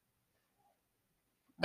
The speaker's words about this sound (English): And what is a podcast without my dog barking in the background?